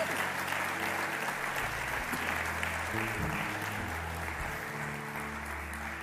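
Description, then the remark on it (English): A large church crowd claps steadily and loudly for several seconds to welcome new believers, a dense wash of applause with low sustained musical tones humming underneath. “Can we put our hands together and welcome new believers into God's family?”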